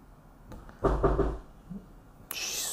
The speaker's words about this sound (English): Scared me. Knock on the door.